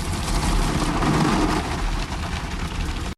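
Steady, dense hiss of spraying water in a car wash fills the space, with a low idling car engine rumbling beneath it, loud throughout before cutting off abruptly.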